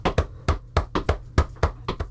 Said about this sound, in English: And I do the complicated knock that only a member of... Wait, wait. See, what would it be? You can beatbox it. It's kicks and knocks. Oh, kicks in polyrhythm, stomps and knocks.